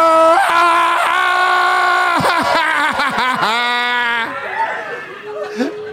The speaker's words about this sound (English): Rosemont! Everybody yell, holy too. Shit. Everybody yell.